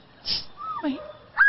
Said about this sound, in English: If you're a bird hunter, oh, come on, whistle.